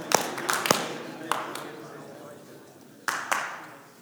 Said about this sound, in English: Okay, if you can hear my voice, clap twice.